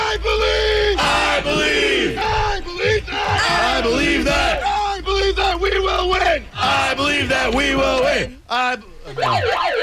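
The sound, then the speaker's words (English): A large crowd chants "Let's go Lightning!" in loud, rhythmic unison for the Lightning hockey team, voices rising and falling in repeated bursts with brief breaks between phrases, filling the whole clip. “We got to hear the, he's got to hear the chant, of course.”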